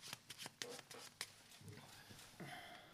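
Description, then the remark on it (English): Playing cards being shuffled during a card trick after a chosen card is pushed into the deck, a quick series of crisp riffling snaps and flutters, followed by softer rustling and sliding as the deck settles, with no talking. “Give them a shuffle again, right.”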